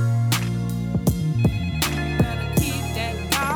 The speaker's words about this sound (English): I don't know why you calling my phone.